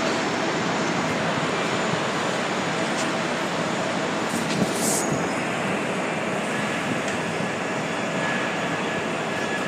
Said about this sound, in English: So here we are at Canary Wharf, and it's a major station on the DLR, the Docklands Light Railway.